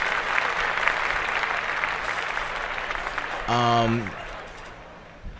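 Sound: clapping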